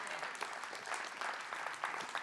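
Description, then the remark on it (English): An audience claps together in steady, moderately loud applause, the many overlapping hand claps forming a continuous patter with a few sharper bursts, and no voices stand out. “We must see and appreciate the value that, yeah, you can clap if you want to.”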